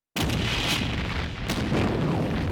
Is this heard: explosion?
yes